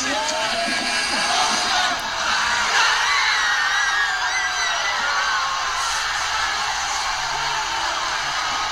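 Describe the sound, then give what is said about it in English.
A huge arena crowd of Toronto Raptors fans roars and screams continuously after the Raptors beat the 76ers 92-90 on a last-second shot, a dense wall of cheering with individual shrieks and whoops rising above the din, loud and sustained throughout. “In an arena with 100,000 screaming Raptors fans, Kawhi Leonard's scream rang the loudest.”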